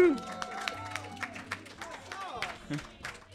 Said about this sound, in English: So, without further ado, let's give it up for your amazing cast. Give a big round of applause for the cast of tonight's episode of SpecScript.